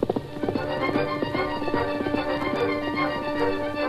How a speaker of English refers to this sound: The steady pound of hoofs sustained throughout the hours of darkness.